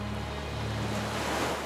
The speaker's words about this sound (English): The sound of waves was soothing, even when they loudly slapped against the rocks.